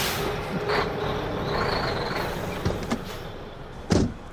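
A heavy truck rumbles, with a few clunks and a sharp burst of air-brake hiss near the end; no one speaks.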